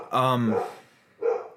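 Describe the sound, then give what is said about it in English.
Dogs bark twice at someone at the door: a loud, drawn-out bark, then a brief pause and a second, shorter bark. “Well, there's my dogs going off. Someone's at the door.”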